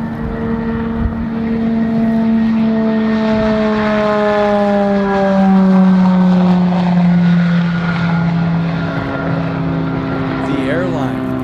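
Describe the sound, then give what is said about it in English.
A nine-passenger electric private plane built by Eviation flies past on its first test flight with a steady, loud humming whine whose tones slowly glide lower as it passes, continuous throughout with no talking. “But now I want to introduce you to a 9-passenger electric private plane that just completed its first successful test flight.”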